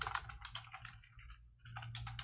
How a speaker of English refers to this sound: I hear somebody clicking here.